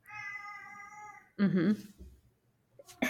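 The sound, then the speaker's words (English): A pet cat coming to say hello meows, a long drawn-out harmonic cry followed by a shorter, louder meow, then a brief chirp after a pause. “Sorry, my cat's coming to say hello.”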